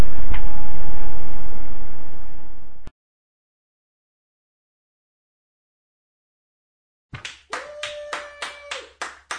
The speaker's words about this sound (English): Stop clapping.